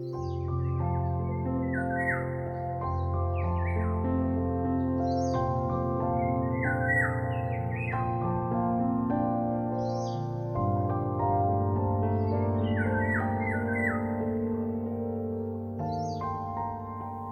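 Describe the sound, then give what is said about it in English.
Music made for pets such as cats and dogs: soft, sustained low chords and drones held steadily throughout, with high bird-like chirps and tweets sprinkled over the top in short bursts. No one speaks. “Hopefully so, because those were some of the hottest beats from the world's leading music producer for pets.”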